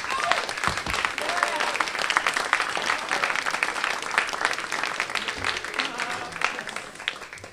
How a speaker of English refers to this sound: So, beginning tonight's event is going to be Jeff Staple from Staple Design. He'll be moderating. Give him a big round of applause.